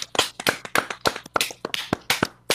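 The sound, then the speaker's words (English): A short round of applause for Keelan from a small group: quick, uneven, sharp hand claps overlapping in a steady patter for a couple of seconds, with no talking. “Another round of applause for Keelan.”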